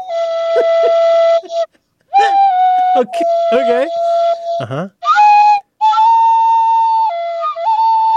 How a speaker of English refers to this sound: I didn't know if that was an ocarina or a recorder. It seemed to have a very limited number of holes, if you'll pardon my saying.